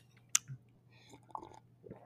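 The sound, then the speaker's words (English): Someone slurps Guinness beer from a frozen glass: a sharp click, then a few quiet wet sipping and swallowing noises over a faint low hum, with no talking. “Slurping away on my Guinness.”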